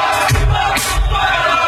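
A large crowd chants and shouts loudly along with a pounding, bass-heavy jump up drum and bass song, voices rising in a dense, continuous roar for the whole moment.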